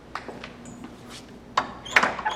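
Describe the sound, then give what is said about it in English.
A door being closed, with a few short clunks and rattles, the loudest near the end, with no talking. “We have a door open, but in case there's some noise over there.”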